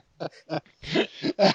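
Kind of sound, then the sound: human body sound, throat clearing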